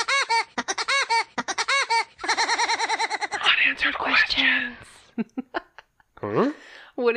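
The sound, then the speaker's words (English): A cartoonish woodpecker call sound effect: loud bursts of rapid, high-pitched chattering that rise and fall like a squeaky laugh. A brief spoken phrase comes in near the end. “Here's a woodpecker that maybe you think might work out.”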